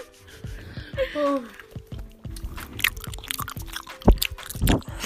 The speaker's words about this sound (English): That's me chewing.